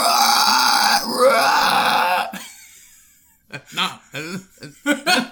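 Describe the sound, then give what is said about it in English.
A person imitates a little pig with a loud, raspy, strained squeal-grunt lasting about two seconds, which fades out, followed after a pause by several short choppy vocal bursts. “That doesn't sound like a little pig.”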